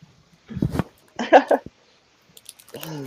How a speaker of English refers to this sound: I have a couple high chews left that I can eat.